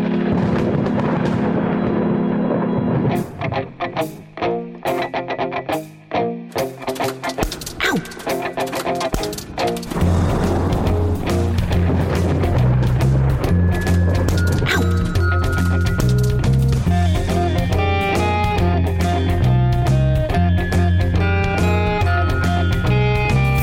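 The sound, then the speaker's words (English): Loud, continuous music built from thunder booms and rumbles mixed with sharp, rapid clattering of hailstones and more familiar instruments, the crackling hits growing denser as sustained tones swell in the second half. “Introduce some more familiar instruments. And enjoy the sound of our electric lightning orchestra.”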